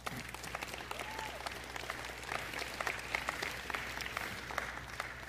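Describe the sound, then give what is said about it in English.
A crowd applauds a speech choir steadily, many hands clapping in a dense, sustained wash of sound at moderate loudness, with a faint low hum underneath. “Can we give another round of applause for our speech choir?”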